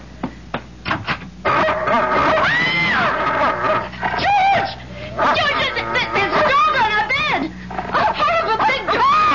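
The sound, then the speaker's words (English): A dog whines, yelps and yips in a long, excited string of rising and falling cries, loud, with short pauses between bursts. “It's only a dog, for Pete's sake.”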